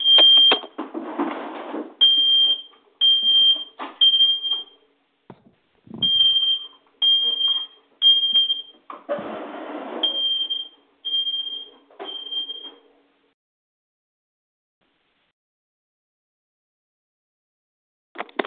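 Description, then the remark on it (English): A home smoke detector goes off without a fire, sounding a loud series of shrill, repeated beeps, continuing rhythmically for about thirteen seconds before falling silent, with a last brief beep near the end. “That was my smoke detector went off.”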